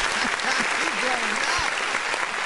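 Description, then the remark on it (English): Steady, dense applause fills the whole stretch at an even, fairly loud level, with a voice briefly audible underneath the clapping. “I mean, let me give him a applause.”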